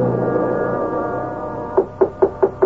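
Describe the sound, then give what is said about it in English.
Five quick, evenly spaced knocks on a door sound near the end, sharp and fairly loud, following a steady low tonal hum that fills the first part. “Who else will be knocking on your door at this hour?”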